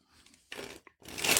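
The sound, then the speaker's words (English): A deck of cards being shuffled: a soft riffle, then a louder crisp burst and a quick tap, followed by a longer, swelling flutter of cards. No one speaks. “All right, I'm shuffling the deck.”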